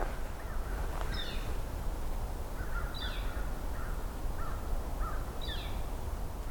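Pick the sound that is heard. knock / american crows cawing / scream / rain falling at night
american crows cawing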